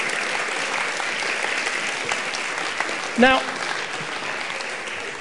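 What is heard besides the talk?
audience applause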